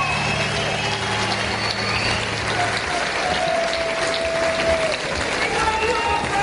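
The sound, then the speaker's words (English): A concert crowd at the BBC Electric Proms 2010 applauds in a steady, dense wash of clapping and cheering that holds at an even, fairly loud level throughout, with a faint murmur of voices mixed in. “You can hear the crowd.”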